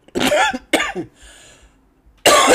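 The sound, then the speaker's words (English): Two harsh, loud coughs in quick succession, then a soft raspy throat-clearing stretch, ending with another sharp, forceful cough, caused by allergies. No speech. “Excuse me, girl. That's my allergies again, girl.”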